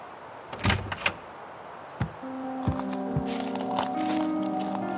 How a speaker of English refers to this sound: The snow had just begun to fall when Jonas opened the tired wooden door of his cabin and stepped outside.